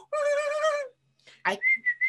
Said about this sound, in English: There you go. I can't whistle.